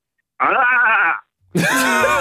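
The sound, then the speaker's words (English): Two loud, wavering voiced calls, Andy Murray's voice making a low goat-like grunt with a shaky, bleating tremble, more drawn out than an explosive grunt, the second call harsher and noisier than the first, separated by a short pause. “Because he might have just been doing a low goat.”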